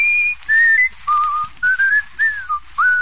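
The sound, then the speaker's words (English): Someone whistles a short melody, a string of clear sustained notes that rise and fall with brief gaps between phrases, with no talking. “Can you sing or whistle ooh what you said?”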